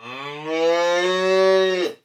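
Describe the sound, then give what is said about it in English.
A cow lets out a single long, loud moo lasting about two seconds, its low harmonic drone rising slightly in pitch before cutting off abruptly, with no talking. “Yes, I guess a cow can be a pet, but we're sticking to the ones that can be kept inside the house.”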